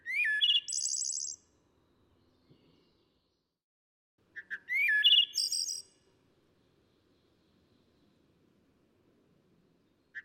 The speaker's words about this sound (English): Bird vocalizations courtesy of the Macaulay Library at the Cornell Lab of Ornithology.